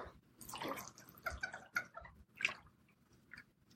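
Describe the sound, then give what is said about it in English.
Water splashes and dribbles in quick, irregular bursts as it spills from a water bottle, fairly quiet, with no one talking. “Goddamn water bottle.”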